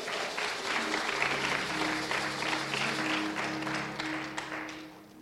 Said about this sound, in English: Let's give God a hand clap of praise before we go any little further.